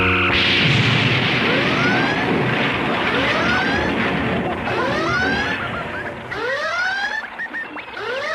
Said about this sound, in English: And then the alarm.